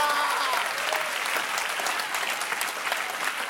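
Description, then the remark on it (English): An audience claps hands in dense, steady applause that holds at an even level for the full few seconds, with a faint voice briefly audible underneath at the start. “That is why you don't clap your hands, you don't celebrate like you should.”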